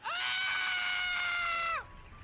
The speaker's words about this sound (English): I then heard my brother scream.